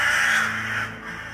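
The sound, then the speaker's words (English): A loud, continuous harsh cawing from a crow fills the scene, rasping and insistent without pause, dominant with no voices present. “The man ripped off his blood-soaked mask and threw it to the ground, shouting something at me that I couldn't hear over the continuous sound of the bird.”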